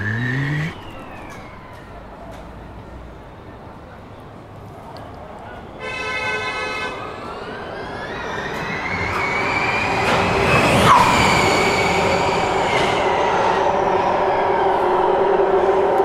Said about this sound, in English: There you go, DLR and Formula E at the same time. Yeah, they're winding the pace up now.